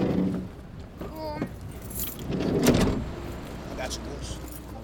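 A van pulls up to a church and parks, its engine rumbling low, with a brief mechanical whine early on and a muffled clunk midway, like a door or handle.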